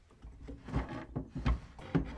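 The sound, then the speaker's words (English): Empty wooden dresser drawers are opened and slid shut several times in quick succession, a series of hollow knocks and scrapes at moderate volume with no one talking. “The drawers are all empty.”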